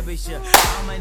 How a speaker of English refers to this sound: People might have thought we just shook hands, but guess what? We clapped.